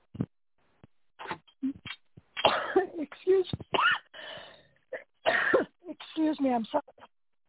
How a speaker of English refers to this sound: Excuse me, I had to cough there. And I just got a tickle in my throat.